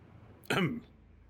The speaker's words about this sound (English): Cough, cough.